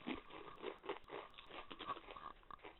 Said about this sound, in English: Really, man? You gonna crunch into the microphone? Really, you fucking heathen? Come on, because I gotta edit it.